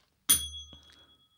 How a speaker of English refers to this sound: Your little desk bell that you keep. What's the name? It's just a bell. Like is it like one of those bells that you have like in hotel receptions? Yeah, like one of those.